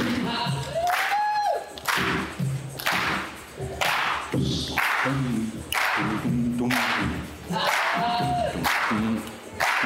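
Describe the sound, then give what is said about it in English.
An audience claps loudly and steadily, with surges of applause, scattered whoops and rising shouts mixed into the crowd noise throughout. “Let's get a clap.”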